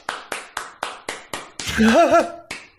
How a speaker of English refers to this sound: You have to tighten your game up tremendously because you are on the verge of a firing squad, but yet you're going to get a golf clap.